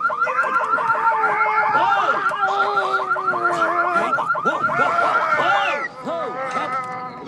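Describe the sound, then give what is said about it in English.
A car alarm blares in a movie scene, looping fast electronic warbles and chirping whoops that fill the whole stretch, then shifts to a slightly quieter, different tone pattern near the end; Arnold Schwarzenegger lifts the car from behind to stop the alarm. “Whoa, these cars have terrific alarms.”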